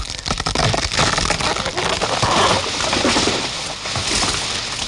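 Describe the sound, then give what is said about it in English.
A tree being knocked down by someone trying to hide behind it: a loud, sustained crunching and crackling of snapping wood and rustling branches that continues for several seconds, with no voices. “I was just trying to hide behind this tree and I sort of knocked it down.”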